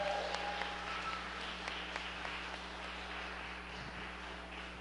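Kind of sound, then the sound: crowd, audience round of applause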